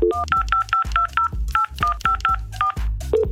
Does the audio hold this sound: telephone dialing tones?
yes